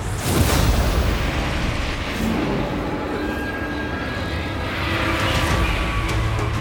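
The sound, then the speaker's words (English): A loud explosion bursts at the start and rolls into a heavy, sustained rumble with crackling debris that keeps roaring throughout, deep, with no voices. “He heard an explosion.”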